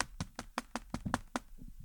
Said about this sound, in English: Not a pounding. I phrased that wrong. More like just knocking loudly. Not like a pounding.